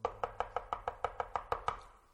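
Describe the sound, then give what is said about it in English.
Rapid, urgent knocking on a door: about eleven sharp, evenly spaced raps in quick succession, fairly loud and steady, with no voices, ending after the last knock fades. “And all of a sudden it's, and as you hear this knock, you're clear that whoever's on the other side of that door, there's a sense of urgency.”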